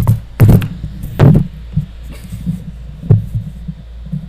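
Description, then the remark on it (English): A microphone gets knocked over: several loud thuds and bumps in quick succession, followed by a softer clunk and low rumbling handling noise, with no one talking. “Knocked over my mic.”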